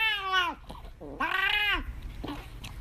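A cat lets out two loud, drawn-out yowling meows as a treat is taken away from it, each bending in pitch, with a short pause between them and a faint trailing sound at the end.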